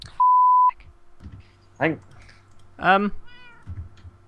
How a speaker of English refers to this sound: I just heard the cat again.